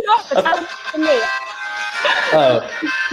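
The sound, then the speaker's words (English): A player's chosen game show buzzer sound effect during a game: a bright, melodic electronic jingle of bouncing, rising and falling tones that runs for about three seconds, with voices and chuckling mixed in. “I want that buzzer.”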